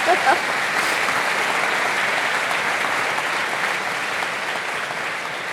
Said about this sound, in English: Let's give her a round of applause for getting through that lightning round.